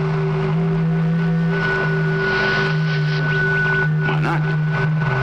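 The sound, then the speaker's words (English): A steady, droning electronic hum with layered tones, presented as radio signal impulses received from the planet Venus, sits under a wash of crackling radio static, broken near the end by a brief warbling, rising-and-falling sweep. “There's no reason that Venus shouldn't radiate impulses.”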